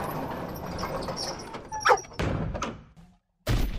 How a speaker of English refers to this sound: And with that, the ark's door swings open, inviting pairs of animals to enter.